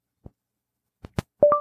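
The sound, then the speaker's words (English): A few faint clicks, then a phone's voice-dial beep, prompting a spoken contact name from the contacts list: two quick electronic tones, the second a little higher than the first, short and clear with no talking. “I listen after a beep.”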